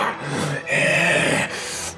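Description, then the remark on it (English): A wolf growls in a low, rough, sustained snarl that swells in the middle and continues for about two seconds with no talking over it. “Wolves. I hate wolves.”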